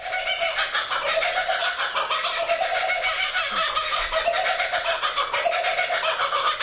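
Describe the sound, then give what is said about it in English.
A kookaburra's raucous laughing call, loud, with rapid cackling notes rolling in repeated rising-and-falling waves that continue without a break for several seconds, with no talking. “Give me the native birds, not the kookaburra.”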